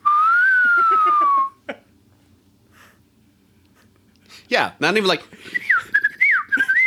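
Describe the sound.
A person whistles a bird call, one long steady tone that rises slightly then drops off, followed by a pause, brief talking, and a few short warbling whistled chirps.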